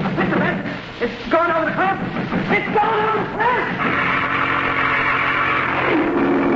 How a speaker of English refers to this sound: But this slope is steep here. I know what I'm doing. But look, the car's moving already. It's starting to roll forward. Yes, it is, isn't it? And it'll keep on rolling.